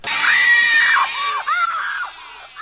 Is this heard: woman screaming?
yes